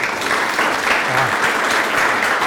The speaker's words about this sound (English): Yeah, round of applause on that.